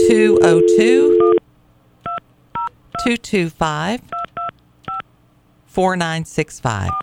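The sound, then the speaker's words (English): A string of short, clear telephone keypad tones as the Grinch's phone number is dialed on the air, about seven or eight beeps at uneven intervals, with people talking before, between and after the presses. “I think I hit a number twice.”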